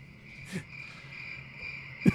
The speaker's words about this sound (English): I'm getting longer crickets.